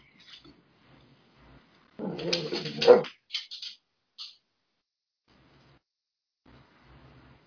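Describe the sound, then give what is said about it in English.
A dog lets out a loud, drawn-out bark, followed by two or three shorter, sharper barks, then quiet returns with only faint low background noise. “Even the dog agrees.”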